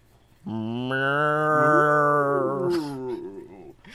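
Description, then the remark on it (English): A person imitates the faint moo of cows heard in the middle of the night, with one long, low, drawn-out moo lasting about three seconds, steady before trailing off, with no other talking. “It actually just came from the cows because we moved them across the street.”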